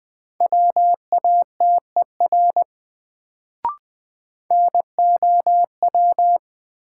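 Morse code beeps at a steady mid pitch, keyed at 20 words per minute in quick dots and dashes as a drill of sentences from the top 100 words. Two bursts of characters are split by a short pause with a single sharp click, and no voices.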